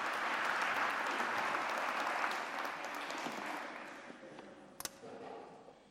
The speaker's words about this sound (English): Let's give Bishop Graham a round of applause as he comes to take stage. Thank you.